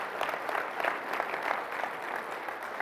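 An audience claps steadily, a dense wash of many hands with bright, crackling texture and small swells in loudness, continuing without voices for a few seconds.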